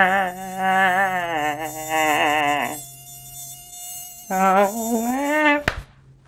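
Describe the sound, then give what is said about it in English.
A mosquito flying next to the ear gives a thin, whining buzz that rises and falls in wavering pitch, breaks off for a moment, then returns in a second burst before ending with a sharp snap. “But the one thing I will miss is when they fly next to your ear at night.”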